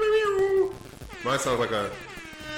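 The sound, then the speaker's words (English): A voice imitates an air horn with two drawn-out, wavering vocal blasts, loud and nasal, the second rising and bending so it comes out closer to a yowl. “Do we have blowhorns or anything? Probably not. I could do my own blowhorns.”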